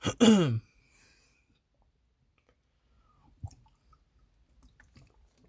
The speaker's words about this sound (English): Well, I'm gonna take some water.